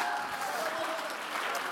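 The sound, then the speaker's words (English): An audience claps steadily and loudly throughout, a dense wash of applause with indistinct voices and shouts blended into the crowd noise. “Oh, clap your hands, stand to your feet and shout.”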